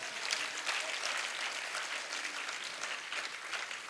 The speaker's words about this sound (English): Clap for Pastor Chris.